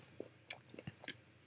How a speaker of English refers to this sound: Solid amount. I'm going to bite it, too. I'm not going to eat the whole thing at one time.